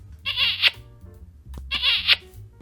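A frog croaks twice, each call a short raspy trill about half a second long, spaced over a second apart against a low background rumble.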